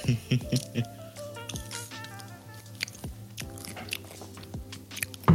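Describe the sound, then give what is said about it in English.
Crunchy chewing of snacks for an ASMR segment, with a steady run of sharp bites and crunches at an irregular pace. A low voice hums or murmurs faintly underneath. “Man, I'm bombing with snacks and stuff. So this is going to be like a halfway ASMR section.”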